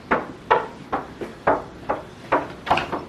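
A door sound effect: a steady run of about eight sharp, hollow knocks or thumps, evenly spaced, with no talking over them.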